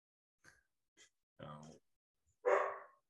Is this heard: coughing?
no